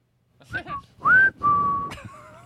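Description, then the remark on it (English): Someone whistles as if calling a dog: a few quick chirpy notes, then a loud rising whistle, then a long steady mid-pitched tone, ending with a sharp click and fainter wavering whistles. “Are you calling a dog?”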